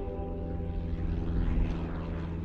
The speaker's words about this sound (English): Early on a Saturday morning, well-to-do tourists fly their tiny prop planes into the Gillespie County Airport. They park their planes, walk from the runway directly into the parking lot,